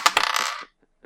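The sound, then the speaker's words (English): A six-sided die is rolled, clattering and tumbling across a hard surface in a quick burst of rattling clicks, then settles with a couple of faint final taps. “I got my 6D ready, and we're going to decide who gets to start and what our order will be.”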